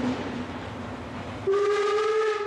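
A train carrying a football team to regional matches in Spain runs at night with its lights out, rumbling steadily along the rails; about halfway through a loud, sustained whistle sounds over the clatter and continues to the end. Nobody speaks.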